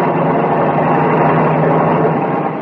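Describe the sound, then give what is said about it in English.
A car comes along a road in heavy fog, its engine and tyres making a broad, steady rumble that holds at an even loudness throughout, with no voices. “Hear that car coming along the road?”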